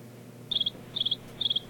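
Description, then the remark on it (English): Three short, high-pitched cricket chirps, each a quick trill of four pulses, repeating at a steady rhythm over a quiet background hum with no talking. “Nice cricket sound.”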